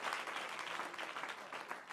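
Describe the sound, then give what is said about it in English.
A crowd claps together in a sustained burst of applause, dense and steady across the whole moment, with no voices standing out above the hands. “Clap your hands if you're thankful for that.”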